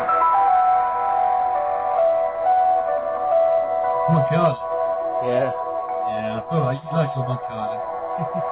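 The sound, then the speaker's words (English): A jaunty Monkey Island video game theme tune plays as a tinny, bright melody of sustained notes, steady throughout; after a few seconds people start talking over the music. “I didn't get the opportunity, but I'm going to play a Monkey Tune.”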